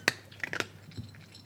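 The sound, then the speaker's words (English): A cat crunching dry food from a bowl: a few sharp, brittle crunches in an uneven burst, followed by softer, fainter chewing sounds, with its name tag tapping the bowl. Quiet overall, with no voices. “It's a cat eating dry food.”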